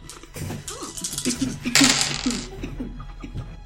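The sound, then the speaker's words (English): A handful of dice, rolled for a monster in a game, clatter and tumble across a hard surface in a quick burst of rattling clicks, while voices murmur quietly underneath. “I also need to quickly roll for the monster. For the monster. Mm-hmm. Break out the dice.”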